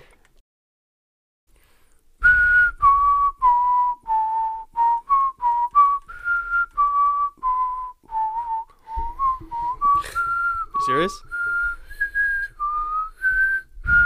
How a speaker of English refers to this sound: Dude, you just had to do an inhale whistle. I did inhale. I did exhale, inhale, exhale.